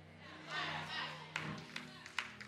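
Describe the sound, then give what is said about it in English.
A handful of sharp, irregular hand claps from one man ring out during a service, reverberant, over a low background hum and faint murmur. “He clapped because he already know”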